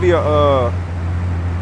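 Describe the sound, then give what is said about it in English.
The engine of an armored money truck in a video game drones with a steady, low rumble throughout, fairly loud. A brief voice-like sound rises over it at the start, then only the engine hum continues. “What they call them things? A money truck.”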